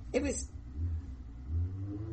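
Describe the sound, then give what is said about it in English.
A motorcycle passing by outside: its engine rumbles low and steady, its pitch climbing as it revs, after a brief sharp burst at the start. The sound is fairly quiet throughout. “It was a motorcycle.”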